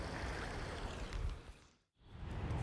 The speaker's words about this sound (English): I'm just standing in front of the Fountain of Neptune, which I just realized I like better than the central fountain, the Fountain of the Four Rivers. It's truly glorious.